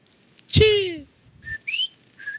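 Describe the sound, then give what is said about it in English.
A person whistles: a loud, breathy opening blast sliding downward, then three short, thin whistled notes, the middle one rising, with no talking. “You gonna be whistling out that, bro.”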